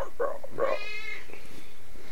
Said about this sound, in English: Hey, you're looking at my cat. It's a cat.